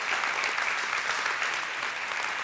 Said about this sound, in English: Here we are 12 years later. Give these folks another round of applause. You guys can be seated.